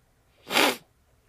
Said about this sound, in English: That was a good sniff there.